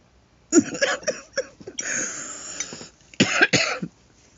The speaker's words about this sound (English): You know, I actually have a girl that comes in and just listens to my live streams just because she likes to hear me cough.